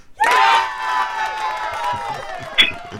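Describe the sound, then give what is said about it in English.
A loud crowd cheers and screams all at once, played as a sound effect, a dense wall of high-pitched shouting that starts abruptly and holds steady for a few seconds, with a sharp whoop near the end. “they screaming for you, Jerry. That shit sound like somebody hit a button and shit”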